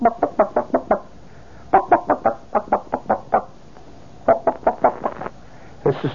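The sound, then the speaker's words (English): A human voice imitates a chicken walking around a yard and pecking at gravel, making quick clipped clucks in rhythmic runs of six or seven, with short pauses between bursts, fairly loud against a quiet background. “That is a chicken who is just walking around the yard and is pecking away at the gravel.”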